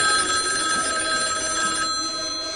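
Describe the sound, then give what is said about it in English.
A telephone rings steadily and fairly loudly in a clip from the 1974 horror movie Black Christmas, where some girls get a creepy phone call; a continuous bright electronic trill with no pause across the short stretch, with no voices present. “And this track is a clip from the movie where some girls get a creepy phone call.”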